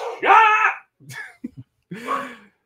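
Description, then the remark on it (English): A female dog barks in a few drawn-out, whiny bursts, a long yowling bark, a couple of short clipped yips, then another stretched bark, loud with brief silences between. “That makes her usually bark worse. Yeah, because somebody else is barking.”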